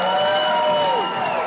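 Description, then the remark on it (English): A roomful of supporters at an election-night campaign party at the Marriott Hotel in downtown Anchorage cheers loudly on seeing the governor's initial lead, voices whooping and yelling together in a dense, sustained roar that holds steady through the short moment. “At a party at the Marriott Hotel in downtown Anchorage, a cheer went up in the room when supporters saw the governor's initial lead.”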